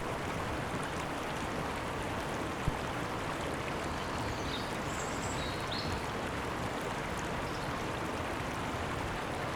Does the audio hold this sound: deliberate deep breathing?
no